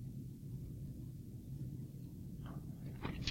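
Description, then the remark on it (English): Many Bible pages turning at once as an audience turns to Philippians chapter 2, a soft papery rustle that swells near the end over a steady low background rumble. No one speaks. “Thankful to hear all those pages turning.”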